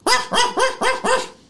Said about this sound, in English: The door to room 3 has dog barking behind it. Right. I head towards the barking dog door. Okay, so you're standing in front of the barking dog door.